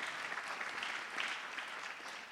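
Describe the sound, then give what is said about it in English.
A crowd breaks into sustained applause as a hand clap of praise to the Lord, a dense, steady wash of many hands clapping at once, moderately loud and continuous throughout with no voices standing out. “Come on, give the Lord a hand clap of praise if you believe that you should serve the Lord.”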